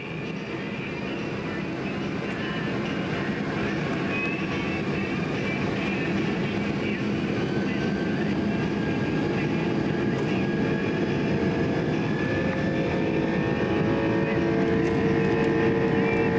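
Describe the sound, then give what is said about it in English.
A Rolls-Royce RB211 ultra-high bypass jet engine on an L-1011 roars steadily through a takeoff run, a loud, dense rush of noise with whining tones that slowly climb in pitch as power builds to max power, with the bumps and rattling of the L-1011 rumbling down the runway. No one speaks. “Take a listen to this RB211 on an L-1011, which I'll get to in a minute. Listen to this thing on takeoff.”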